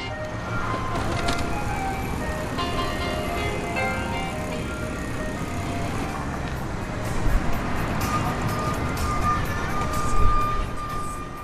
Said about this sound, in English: On 18th Street in Pilsen, on the southwest side of Chicago, the ice cream truck searches out new customers.